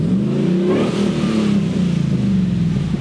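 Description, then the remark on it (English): A car engine revs up loudly through a short side exhaust of TIG-welded, ceramic-coated stainless steel with dual MagnaFlow mufflers and a crossover, its deep exhaust note rising and falling in pitch over a few seconds with a raspy, throaty rumble. “So if you keep your foot out of it, it's mellow. It's a short exhaust, but it's all TIG stainless ceramic coated with dual MagnaFlows and a crossover.”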